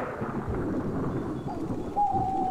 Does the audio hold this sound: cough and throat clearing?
no